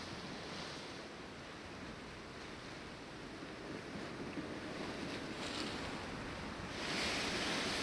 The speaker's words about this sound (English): And then there's a bit of sea ambience